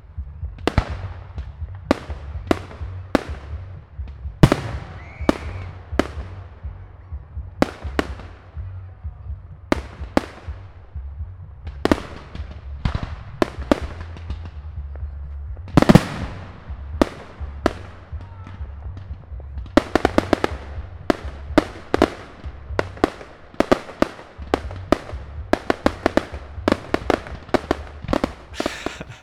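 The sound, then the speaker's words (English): Fireworks exploding over Lake Ontario in a long, irregular barrage of sharp booms and pops, some bursts loud, others fainter, over a low rumbling crowd murmur, with a dense flurry of cracks near the end. “But one thing I can do is play you this quick snippet of some firework noises so that you can feel like you were there that night.”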